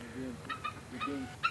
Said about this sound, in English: The mother eagle protests the intrusion with a series of clucks, squeals, and whistles.